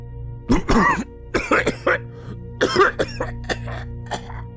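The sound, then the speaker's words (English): A man coughs and hacks violently in a series of harsh, wet bursts with brief gasps between, loud, with no talking. “The man coughed a terrible cacophony, doubling over and hacking up some dark fluid from within himself.”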